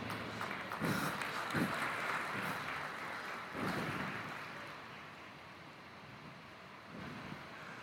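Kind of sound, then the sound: nature, rain starting to fall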